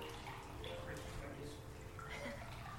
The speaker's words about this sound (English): As the last pieces of heavy plastic were lifted out from the bed of the river, the water began to flow again.